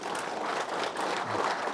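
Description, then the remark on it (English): An audience applauds in thanks for a man's help to a motorcycle road racer, in a steady, dense wash of many hands clapping at once, a continuous crackling roar that holds at an even level throughout with no voices heard. “And he deserves a round of applause for that.”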